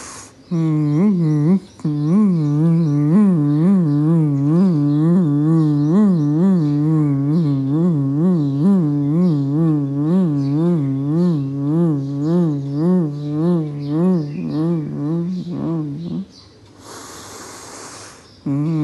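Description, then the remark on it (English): A long, steady nasal hum from a human voice during Bhramari (humming bee) breathing practice, like a buzzing bee, held at a low pitch with a gentle wavering pulse, ending in a soft breathy exhale. “Continue the rest of the Bhramari with the hummingbird, humming bee kind of sound.”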